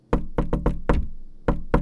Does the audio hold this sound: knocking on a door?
yes